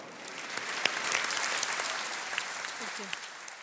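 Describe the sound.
A crowd claps steadily throughout, a dense wash of many hands at moderate volume, with a few faint voices rising briefly near the end.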